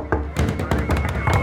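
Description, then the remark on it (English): Knocking on an apartment door in a building on the Lower East Side: a rapid, uneven series of loud, dull thuds, about seven in under two seconds, over a steady low rumble. “And wow, it's a knock on my door.”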